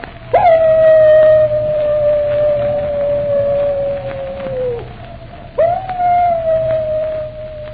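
A wolf dog, Moran's dog, lets out a long, steady howl lasting several seconds, fading at the end, then begins a second howl after a brief pause, over a low background hum.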